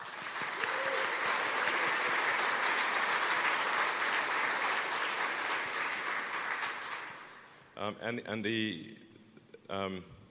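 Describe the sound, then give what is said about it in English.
A crowd at Giga Texas applauds steadily and loudly for about seven seconds for the teams building Giga Texas and Giga Berlin Brandenburg, a dense wash of clapping that fades as a man begins speaking. “So just a hand for those teams as well.”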